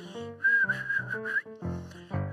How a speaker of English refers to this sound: I mean, speaking of bones, looks like the dogs found the key to happiness. Whistling.